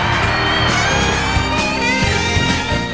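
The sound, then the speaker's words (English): A loud, continuous wall of crowd cheering with whoops and shouts, a dense canned roar that stays steady throughout without any single voice standing out. “All that fake cheering. I don't need the fake cheers.”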